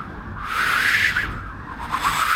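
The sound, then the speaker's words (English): A voice imitates whistling wind: a steady, breathy hiss carries a mid-high whistle that swells, dips and rises again over a couple of seconds, with no words. “I need the whistly, like performed wind that's like.”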